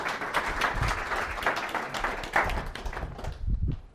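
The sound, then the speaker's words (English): A crowd applauds steadily, many hands clapping in a dense, continuous wash that holds for several seconds before thinning and fading out toward the end. “Give them a round of applause as they go.”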